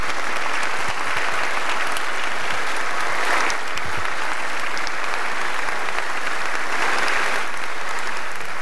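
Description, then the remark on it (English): Sustained audience applause after Zelensky's address delivered over a Zoom call. A dense wash of many hands clapping at steady loudness for the full stretch, with no voices rising above it. “I'm pretty sure that was the first time in history people applauded a Zoom call.”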